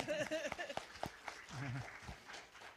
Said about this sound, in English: This group committed to a 32-week Bible study. We survived COVID and kept going. They deserve your applause.